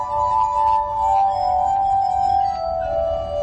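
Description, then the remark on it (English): A glass armonica rings out with a steady, sustained tone from wet fingers on glasses spun by a foot-driven large wheel on a metal rod, a pure humming drone that holds and shimmers slightly throughout, fairly loud, with no voices. “And then I'm using my foot to make all the glasses move at the same time. So I can play any glass I want.”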